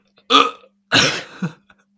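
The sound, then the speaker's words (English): A voice imitates a cough with two short, harsh bursts. The second is longer and trails into a throaty rasp, with no talking around them. “Do you hear my cough, like, trying to, like...”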